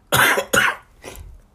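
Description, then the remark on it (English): Three coughs in quick succession, the first two loud and harsh, the third softer and shorter, from a single person with no talking. “Sorry for the coughing.”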